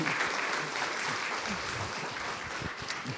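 Steady applause from an audience, a dense crackle of many hands clapping at an even, moderately loud level throughout, with faint murmurs of voices mixed in.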